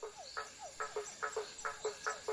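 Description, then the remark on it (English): Crickets chirping in a field at night, a steady rhythmic pattern of short clicking pulses in quick repeating groups, moderately loud over a faint hiss of background air. “Glow crickets clacked their three hind legs together in a waltz beat when they sniffed the books in Mo's bag”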